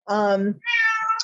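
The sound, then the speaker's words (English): A cat meows twice in quick succession, fairly loud; the first call is low and drawn out, the second higher and slightly rising, with no talking. “My cat is agreeing with me here.”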